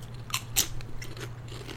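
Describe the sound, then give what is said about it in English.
Crunching of bell pepper potato chips, tasting like standard barbecue chips and made by the company Funny Frisch, being bitten and chewed, with four or five sharp, crackly crunches spaced irregularly over a low steady hum. No one speaks. “People just get to listen to us. Crunch. Crunch here.”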